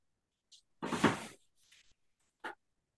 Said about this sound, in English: Pulls out chair. Oh, it's a WrestleMania 2000 chair. Very nice.